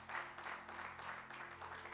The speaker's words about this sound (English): I want you to have your seats and clap your hands for Jesus this morning. Oh, clap your hands for Jesus.